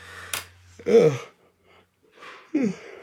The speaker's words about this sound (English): Excuse me, yawning this morning